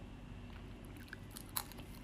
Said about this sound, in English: I have a guilty pleasure, which is eating with my mouth open. I know a lot of people detest it. Like, I know a few people that would just straightly kill a person who eats with their mouth open or chew loudly, but I am one of those.